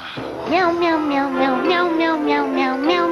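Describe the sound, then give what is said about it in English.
A Meow Mix cat food commercial jingle made of meows, with about eight quick, evenly spaced meow pulses riding over a steady, sustained tone. The sound is loud. “It always just sounded like meow, meow, meow, meow, meow. It was like a Meow Mix commercial.”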